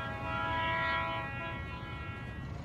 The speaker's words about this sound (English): The train whistle sounds again, a little closer now, louder.